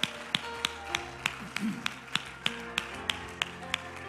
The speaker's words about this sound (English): We praise you, Lord, all over this house. Would you clap your hands to the Lord and let's praise him together?